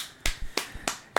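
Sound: hand clapping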